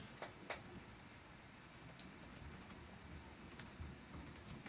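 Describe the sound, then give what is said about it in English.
Typing on a computer keyboard, a scattered series of soft clicks and taps at an irregular pace, fairly quiet, with no voices. “Oh, and he's typing for us, because if I type anything, it just comes through as a hideous clatter through the speaker.”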